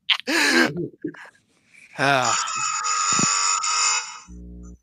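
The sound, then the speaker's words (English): A loud, harsh buzzer sound effect blares for about two seconds after a burst of vocal exclamations, its raspy tone steady and droning before cutting off, followed by a brief low hum. “That's a word buzzer I got. It sounds like a lawnmower that just got caught.”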